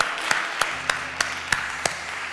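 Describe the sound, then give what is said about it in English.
A group claps hands in praise to God, with six sharp, evenly spaced claps standing out over a steady wash of scattered clapping and room noise, moderately loud. “So let's give God a hand clap of praise for that.”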